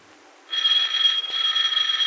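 A home's doorbell starts ringing after a short pause and keeps going in one steady, shrill electric ring with a buzzing, metallic edge. No one speaks over it.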